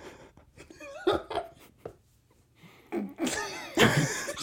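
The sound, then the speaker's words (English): Several sharp, breathy bursts, a few short ones and then a louder, longer run, like sneezing fits mixed with giggly gasps, with no talking. “I think I have the sneezes.”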